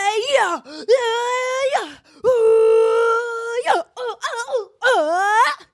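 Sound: person screaming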